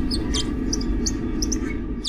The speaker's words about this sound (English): A colony's chirp is established by the queen. It's like high society fashion. Once the upper crust does something, all her subjects adopt it. And the mole rats use the chirp just like the Gileadites use the word shibboleth.